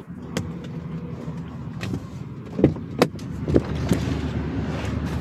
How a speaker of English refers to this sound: it was the traffic, believe it or not. Okay. Yeah. I'm moving. Because once you got out of the car, it got louder.